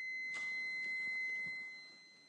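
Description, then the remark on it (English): A faint, high-pitched electronic alarm tone, not a fire alarm, sounds steadily from somewhere in a house, holding for most of the moment before fading, with soft indistinct knocks in the background and no one speaking. “Some kind of alarm going off in my house.”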